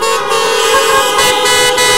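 Several car horns blare together in a sustained, overlapping chorus, loud and steady for the full two seconds, with brief swells as individual horns join in. Churchgoers in cars in a church parking lot honk in response to the call to honk if saved.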